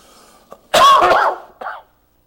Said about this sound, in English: We've had this old cough all week. We apologize for it. Ain't been able to shake it.